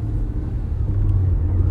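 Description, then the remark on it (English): A steady, deep rumble of street traffic, road and engine noise heard from inside a moving car, with a low hum running continuously beneath it and no voices. “All that fucking traffic.”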